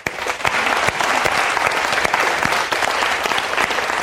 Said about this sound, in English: Now, it was a very Baptist clap, by the way. I grew up Baptist, and that was very Baptist.